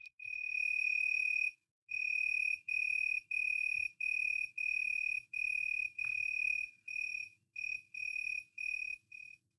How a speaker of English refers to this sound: I remember last summer walking in the lavender fields near Alton. Here's the crickets.